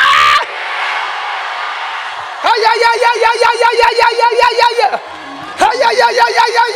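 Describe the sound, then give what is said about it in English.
A large crowd at a morning prayer screams "Jesus" together loudly in unison, as loud as it can, in two long sustained bursts separated by a brief lull, over a background of crowd murmur. “Say as loud as you can, just scream Jesus.”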